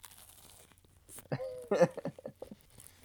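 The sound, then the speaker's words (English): A crisp bite into crispy bread: a burst of loud crackling crunches, followed by a few softer, scattered crunches as the chewing trails off. “Are you going to take another crunch of that?”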